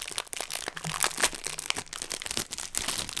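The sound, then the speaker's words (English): Continuous crinkling of the paper wrapper of a Toffee Crunch Blondie snack being broken open, a dense run of sharp rustles and crackles that fill the whole moment with no talking over them. “There's a piece of paper just getting away.”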